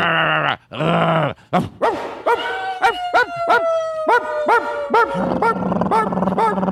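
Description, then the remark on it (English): People mimic dogs barking with their voices: a few long drawn-out yowls, then a quick run of sharp, evenly spaced barks and yelps, loud, with several voices overlapping near the end. “We do probably the best one we do is dogs barking.”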